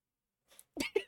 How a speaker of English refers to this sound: We both turned to judge your fucking sneeze. And no one blessed them.